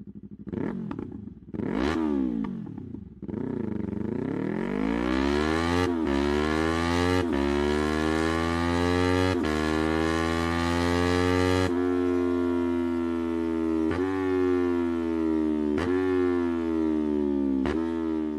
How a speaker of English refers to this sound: This is, just so you know, this is an Akrapovic exhaust. See what you think. Let's hear it.